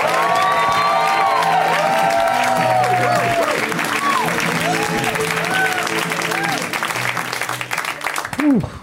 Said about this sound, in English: When it's somebody's first time on the show, we give them a huge round of applause. So let's get it started right now for this comic, who's in town from Austin.